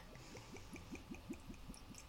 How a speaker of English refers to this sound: Here we go. There we go, opened. And now I'm gonna pour myself a glass.